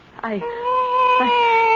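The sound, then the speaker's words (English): A cat lets out a long, drawn-out meow, starting with a short rising chirp and then holding a steady, whining tone, fairly loud. “I can't strangle a cat.”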